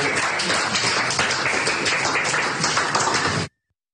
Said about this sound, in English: And you do hear people clapping.